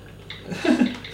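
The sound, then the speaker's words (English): Water trickles through a pour-over coffee brewer in a kitchen in a soft, continuous stream that swells briefly toward the middle, fairly quiet, with no talking. “Just have a quick flick cam of this pouring.”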